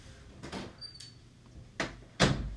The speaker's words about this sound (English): I'm going to go close this door because somebody opened it. There's a lot of noise here.